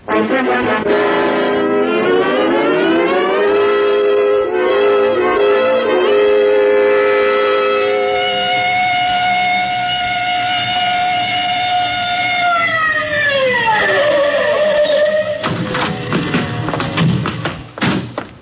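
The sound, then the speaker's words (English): A loud police car siren winds up to a long sustained wail, then slides back down, with a burst of clattering knocks near the end and no voices. “You can use the siren.”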